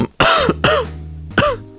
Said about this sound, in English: that was me coughing into my hand